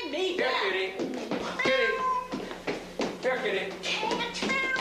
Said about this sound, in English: Get away, cat. Here, kitty. Come on, give me that.